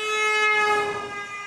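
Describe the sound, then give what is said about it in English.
A loud, sustained train horn blares as one continuous chord for about a second and a half as the train moves away, easing slightly in volume toward the end, with faint rail rumble beneath. “Can you hear how the pitch of the honk changed as the sound source moved away from you?”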